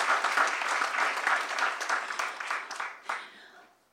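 An audience gives a final round of applause for the event's organizers, with dense, steady clapping that holds strong for about three seconds, then thins out, with a last burst of claps before it fades to quiet.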